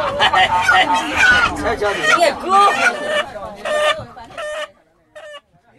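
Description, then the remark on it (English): Chickens cluck loudly, a dense flurry of overlapping squawks at first that thins into a few separate, evenly spaced clucks before falling quiet; a chicken bought by a tourist on a bus to feed a lion. “Okay, I'm going to buy a chicken and I'm going to feed the lion.”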